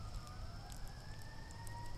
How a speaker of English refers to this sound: Somebody got in trouble. Can you hear? Yes. I heard quite a few sirens today.